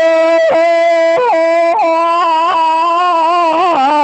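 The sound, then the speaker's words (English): A loud, sustained, eerie howl holding a steady pitch, broken every second or so by brief wavering dips and swoops, continuing unbroken for about four seconds with no talking. “A horrifying infernal howl.”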